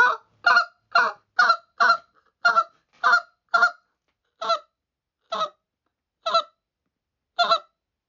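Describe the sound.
A goose call is blown at geese in the air with hiccup and spit notes, giving a dozen short, sharp honking notes, quick and clustered at first, then slowing into evenly spaced single clucks, loud with no voices.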